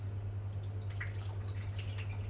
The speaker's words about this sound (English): And anyway, a dripping tap that won't shut up. It will shut up if you just ignore it.